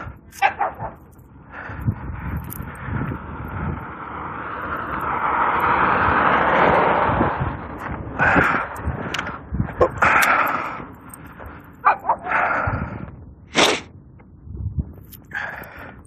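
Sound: puppy barking and whimpering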